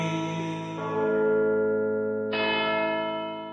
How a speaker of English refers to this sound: The church bells are fucking full on.